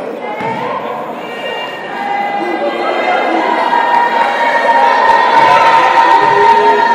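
The women's team shouting together at a free throw, a dense, sustained chorus of raised voices that swells louder over several seconds with no single speaker standing out.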